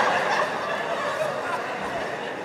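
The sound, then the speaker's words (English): A person imitates a bird call, producing a loud, steady, warbling gobble-like sound that carries on without pause for a couple of seconds. “This one good goddamn bird right here.”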